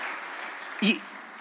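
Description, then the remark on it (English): A crowd applauds the provost with a steady, dense wash of clapping throughout, and a brief voiced shout rises above it midway before the clapping carries on at the same level. “Please give the provost a round of applause.”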